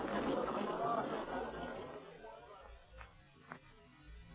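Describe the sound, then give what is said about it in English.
Crowd chatter at a fire scene: a dense murmur of many overlapping voices, loudest at first, then thinning and fading, with two faint short knocks near the end. “Let's get Clint out of this crowd.”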